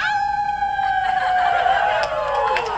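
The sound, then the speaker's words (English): A person howls like a wolf: a loud, sustained, wavering howl that slowly slides downward, with what sounds like a second voice joining in partway through. “Are you ready for your first official howl?”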